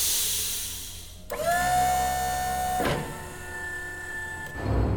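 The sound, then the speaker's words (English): A gigantic hydraulic vault door opens: a breathy hiss of hydraulic power gives way to a steady whining motor hum with layered tones, broken by two dull clunks as it keeps grinding along. “Seconds later, the gigantic door started to open with a hiss of hydraulic power.”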